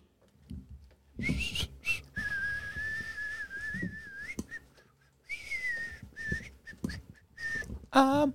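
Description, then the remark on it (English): A person whistles a wavering tune in two long phrases, clear, with a brief pause between them, ending in a quick rising flourish; faint background noise underneath. “Whistling Dixie. That is the term.”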